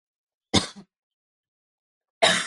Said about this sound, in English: Well, that's just me coughing right now. That's not really me being sick.